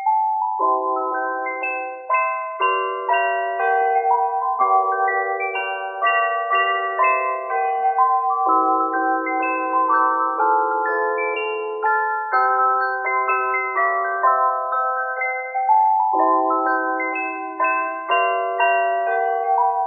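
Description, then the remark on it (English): A cheerful Christmas melody rings out on chimes, bright bell-like notes stepping up and down in a steady rhythm with a lower accompaniment, sustained and fairly loud, with no voices. “It's a bit of a tune that I'll play on my chimes that I've got with me here.”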